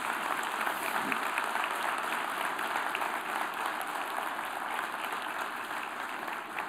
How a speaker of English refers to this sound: Let's give these guys a round of applause.